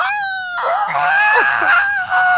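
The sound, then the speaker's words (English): A voice imitates a griffin's shrill, eagle-like scream, a sustained high wavering screech lasting a couple of seconds, loud with a raspy edge. “Griffin is, it's like a screaming eagle, dude.”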